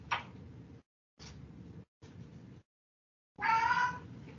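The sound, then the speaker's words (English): A cat named 11 makes a few short, scratchy calls separated by brief silences, then lets out a clearer, drawn-out meow. No one speaks. “Is that 11? Yeah, that was 11.”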